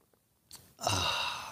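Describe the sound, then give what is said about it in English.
A short soft slurp, then a longer breathy sound like a satisfied exhale after drinking, fairly loud and hissy, with no talking. “It's called the simultaneous sip, and it's going to happen right now.”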